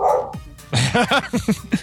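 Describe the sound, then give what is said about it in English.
A dog barks in a quick, excited burst of about five or six sharp, high barks, fairly loud, following a brief muffled noise at the start. “My dog didn't like that.”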